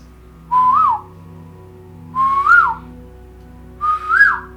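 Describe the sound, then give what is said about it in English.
A person whistles an imitation of an Asian koel's call three times, each a rising two-part note climbing higher than the last, with short pauses between, over a low steady hum. “In fact, I understand that you are able to make a very good call for the koel, right?”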